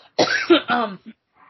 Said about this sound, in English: So, sorry, I got a cough.